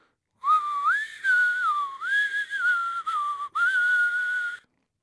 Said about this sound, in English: Well, start whistling. Oh, hang on a second. No, here's my whistle right here. I was looking around for it.